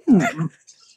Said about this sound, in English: I'm burping. So when I talk a lot, I burp. It's just a thing.